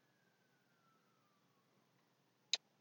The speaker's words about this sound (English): For those just tuning in, we are recording behind a fire truck, apparently.